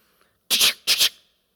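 One loud sneeze breaks the quiet in two sharp, breathy bursts, a quick intake-like blast followed immediately by a second, then silence. No one speaks.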